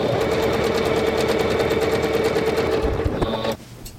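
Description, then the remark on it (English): A Singer Confidence sewing machine runs steadily, sewing a basic zigzag stitch, with a fast, rhythmic mechanical whir and rapid stitching clatter, then slows and stops near the end. “This is a mid-range, more power than you really need if you're just a casual sewer, but what I like about it is it has many fancy stitches built into it, and I am using a very basic zigzag pattern to give it a little more zing.”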